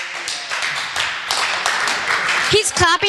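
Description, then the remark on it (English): Steady, quick hand clapping by one boy, clapping on behalf of two others who did not clap, a run of sharp bright claps for a couple of seconds, before a voice briefly cuts in at the end. “He's clapping for the both of you because you didn't clap.”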